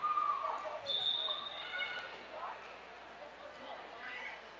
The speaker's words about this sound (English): and we get a whistle. And what do we have?